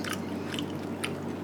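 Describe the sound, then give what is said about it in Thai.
Crisp bites into a firm piece of candied bitter vine (boraphet) preserved in syrup and sold in a box, a few sharp crunches followed by soft chewing, with no talking over a low steady background hum. “กินเป็นไง ไม่มีกลิ่นเลย ผมกัดแล้วครับ”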